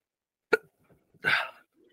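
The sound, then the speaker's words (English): Two hiccups with no talking: a sharp, abrupt gulp, then after a short pause a longer, breathier hiccup that trails off. Both are clear and fairly loud. “Fix my, like, the hiccups?”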